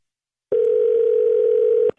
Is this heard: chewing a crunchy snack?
no